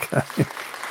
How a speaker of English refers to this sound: We got claps now. Yeah. Got the clap.